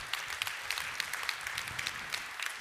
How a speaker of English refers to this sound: Give him a round of applause this morning. He deserves it.